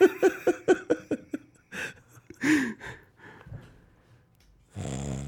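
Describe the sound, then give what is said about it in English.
A voice imitates two raspy snores, preceded by a quick run of short, choppy vocal bursts; fairly loud, with a low humming tone starting near the end. “Then you just hear two snores.”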